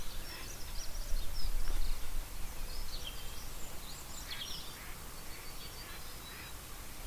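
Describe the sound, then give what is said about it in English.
Faint ducks quacking in scattered bursts over a steady outdoor background hum, with other bird calls mixed in and no voices. “Some ducks.”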